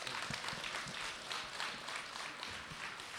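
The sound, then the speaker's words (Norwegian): Sustained audience applause welcoming Rosenborg footballer Sverre Halseth Nypan, a dense wash of many hands clapping steadily at a moderate, even level with no voices standing out. “Men nå står han her, så gi Sverre Halseth Nypan en god applaus, folkens!”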